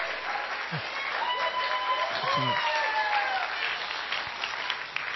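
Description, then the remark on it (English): Steady audience applause for the A honor roll students fills the whole clip, a dense, even wash of many hands clapping, with some voices and a few rising cheers or whistles mixed in. “Your A honor roll students, everybody, last round of applause.”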